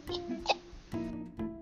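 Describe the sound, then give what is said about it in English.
A person makes a series of short, strained, throaty coughing hacks, about four voiced bursts in a loose rhythm, like someone gagging up a hairball. “Were you coughing up a hairball?”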